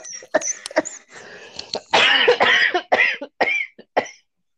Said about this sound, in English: I mean, I already cough all the time anyway.